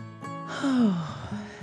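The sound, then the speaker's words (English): A person imitates a yawn: one long, breathy vocal yawn that swells and then slides downward in pitch over about a second. It is moderately loud, with no talking. “As he continued on his way, the little train engine yawned.”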